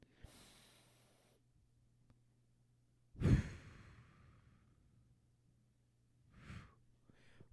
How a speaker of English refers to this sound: Four in, 4 seconds hold, 8 seconds out. My breathing meditations.